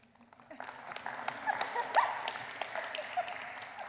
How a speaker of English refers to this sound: And two services out of three have applauded me.